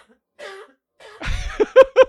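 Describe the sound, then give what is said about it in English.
A loud burst of coughing tangled with laughter, starting with a soft breathy chuckle, then a rough cough followed by three sharp, rhythmic laughing bursts. “And we ended on a cough laugh.”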